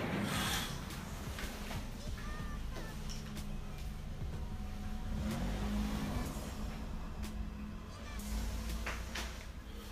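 A sports car engine roars and revs loudly as it drives past, a steady throaty rumble that swells and holds for the whole stretch, with faint voices mixed underneath.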